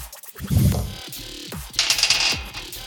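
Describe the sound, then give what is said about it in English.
Dice clatter and tumble across a hard tabletop in a game roll needing to beat an 8, a quick burst of rattling clicks that bounce and settle within a couple of seconds, fairly loud, with no talking. “Beat it with the dice before I added anything.”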